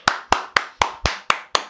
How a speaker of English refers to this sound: And that round of applause was for everyone tuning in and everyone that has been following Joel's Mind for the last year.